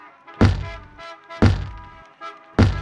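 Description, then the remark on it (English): A head bumps against a car window three times, each a dull, heavy thunk about a second apart, standing out loudly over a faint, steady tonal hum. “I bet he would be mad if you hurt the window with your head like that.”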